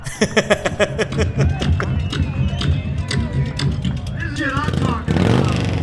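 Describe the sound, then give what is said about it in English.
A loud scratch-built straight-kick motorcycle with a 74 cubic inch Harley engine and shovel frame, winner of a saloon's loud pipes contest, revs in bursts through open, throaty pipes, with crowd chatter and voices mixed in around it. “This is the winning motorcycle at the Broken Spoke Saloon's Loud Pipes Contest.”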